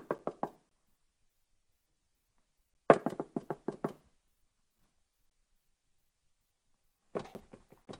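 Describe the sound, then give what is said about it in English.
Three bursts of sharp, rapid knocking on a door, each a quick cluster of four to six raps, separated by long silent pauses; fairly loud, with no voices. “Knock and keep on knocking.”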